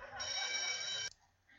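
A telephone rings loudly and steadily for about a second, then stops abruptly with a sharp clack as the receiver is grabbed, leaving faint background noise.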